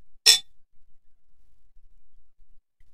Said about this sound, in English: Sorry, we had to take a sip of wine.